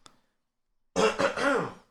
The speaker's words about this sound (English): Had to clear my throat. Let me clear my throat.